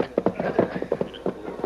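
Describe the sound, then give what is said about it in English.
Horses' hooves clip-clop in a quick, uneven rhythm of sharp knocks, moderately loud, with no voices over them. “Off your horses, gents. This way they won't hear us.”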